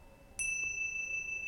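A single bell is struck once during a guided meditation and rings on, its clear, bright tone holding steady and slowly sustaining to the end, with no voices present.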